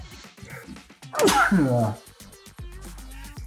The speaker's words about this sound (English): I'm better now. It wasn't bad. It wasn't like one of those nasty ones. It was just a kind of an air sneeze.